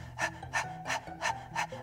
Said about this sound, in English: This breath of fire is a rapid breath in and out through the nose, and the best way to feel it is to actually stick your tongue out and pant like a dog. Get that feeling up here.